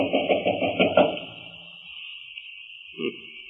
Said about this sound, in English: Well, there doesn't seem to be anyone stirring about inside. Knock again.